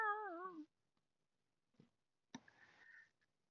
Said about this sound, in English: And you all hear the meow.